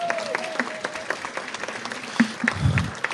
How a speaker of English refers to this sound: So be kind to the ACB National Office staff, because these folks are working their tails off. In any case, yeah, give them a round of applause.